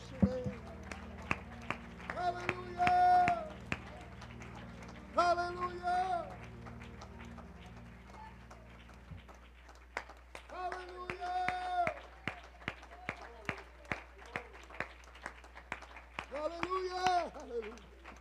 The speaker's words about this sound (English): Would you give the Lord a great hand clap, praise, and maybe you want to shout unto God.